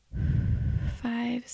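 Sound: slow audible exhale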